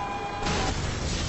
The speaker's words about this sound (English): Fire, yeah. But not really an explosion